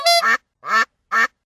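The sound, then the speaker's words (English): A duck quacks three times while eating a bread crust, loud, nasal bursts separated by short pauses, with no one talking over them. “that duck of yours, Barry, is eating my crust”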